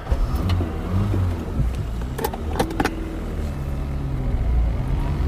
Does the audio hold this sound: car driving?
yes